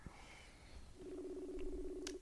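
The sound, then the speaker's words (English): A video call ringing tone: a steady, buzzy electronic tone starts about a second in and holds evenly for over a second, with a faint higher beep before it. No one speaks. “We're yeah, ringing.”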